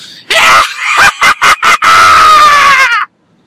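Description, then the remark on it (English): A loud, raw human primal scream bursts out, broken by a few sharp stuttering breaks before a long sustained wail that cuts off abruptly; strained and rooster-like in tone, with no talking. “So, as sometimes will happen, we will throw in the primal scream. The primal scream to the ancient Friday gods.”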